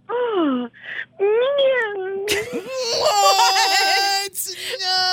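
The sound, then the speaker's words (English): A woman's voice imitates a cat meowing: a few drawn-out, whiny cries with falling pitch, followed by a louder, longer wavering yowl as other voices seem to join in. “at dinner and she gives out a meow?”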